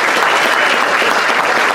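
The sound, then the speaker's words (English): A crowd claps steadily in a dense, sustained, loud burst of applause for a band, who are performing that night, with no pauses across the short stretch. “So I would like to have a big round of applause for them.”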